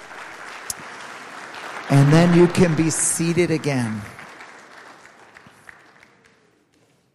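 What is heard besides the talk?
audience applause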